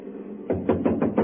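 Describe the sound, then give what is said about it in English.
Five quick knuckle raps on a wooden door, evenly spaced, following a brief stretch of low hum with no voices. “Now, first of all, we'll try rapping on the door.”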